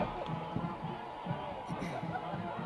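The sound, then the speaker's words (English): The Oakland football crowd in the stands across the way makes a steady, busy roar of overlapping voices, with no single cheer standing out. “Let me turn that crowd mic up so you can hear them a little bit.”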